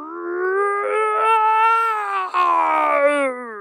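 A single long, loud roar rings out, swelling and wavering for a few seconds before tapering off: a clubhouse doorbell buzzer that sounds like a lion's roar.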